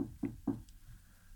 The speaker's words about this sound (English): And as soon as you like get to the point where you feel like, okay, I'm good, there's a knock at your door.